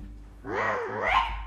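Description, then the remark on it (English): A voice imitates an angry bird's squawking call: a single drawn-out, wavering cry that rises and falls in pitch, fairly loud, lasting about a second. “Ooh-hoo-hoo, an angry bird. Is that who you are?”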